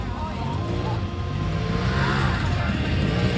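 A loud engine of a big Turbo S off-road desert race car with long suspension travel, driven by Kenny for the first time, roars steadily for the whole stretch, a continuous throaty drone with some rising revs near the end.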